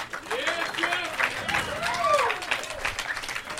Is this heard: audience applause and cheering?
yes